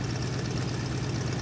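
Engines of a refurbished 1939 Sea Otter flying boat run with a loud, continuous drone as the pilot throttles up for takeoff, a heavy low rumble with a buzzing hum above it, holding steady throughout with no voices.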